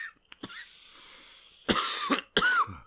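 Two loud, harsh coughs, one right after the other, following a few faint clicks and a stretch of near silence.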